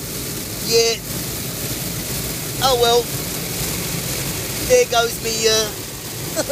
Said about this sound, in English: mate, this car wash, I just realised I left the window open. Hang on, mate.